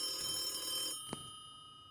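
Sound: telephone bell ringing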